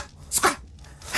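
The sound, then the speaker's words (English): A person imitates a dingo bark from Australia with one sharp yelp rising out of quiet breathy noise, ending in a brief hiss. “That's barking in Australia. If you've never been to Australia, that's what dingoes sound like.”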